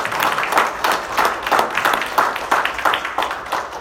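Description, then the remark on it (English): Church audience applause for a woman who gave the message, many hands clapping steadily at moderate loudness with a soft, diffuse crowd texture, no speech over it. “Let's give her a hand clap for her.”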